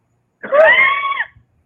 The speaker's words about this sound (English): I haven't made a woman scream like that in a couple of weeks.